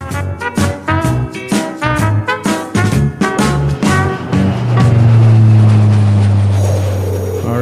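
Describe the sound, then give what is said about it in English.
A series of rapid rhythmic thumps gives way to a loud, steady engine roar as an airplane drones on with a low hum and a faint high whine. “For whatever reason, that airplane sound makes me think of Rudolph Red-Nosed Reindeer.”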